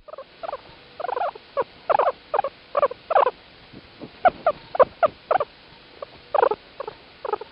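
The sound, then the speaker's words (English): A guinea pig squeaks in a steady run of short, chirpy calls, about two or three per second, mid-to-high pitched and moderately loud, with no talking over them. “Now, last but certainly not least, this show is brought to you by this week's animal ambassador, the guinea pig.”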